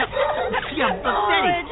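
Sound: dogs barking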